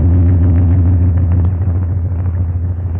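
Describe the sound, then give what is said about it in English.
An airplane engine drones steadily in flight on a night with a bright moon, a loud, unbroken low rumble with a heavy humming pitch that holds constant throughout, with no voices. “See, this is certainly a wonderful night for flying.”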